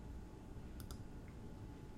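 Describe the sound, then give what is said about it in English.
A couple of quick, sharp computer keyboard key clicks, followed by a softer tap, against a quiet low hiss with no one speaking. “I muted myself on accident. I guess I hit the keyboard.”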